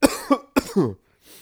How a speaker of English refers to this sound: I gotta chill out. I'm going to start coughing.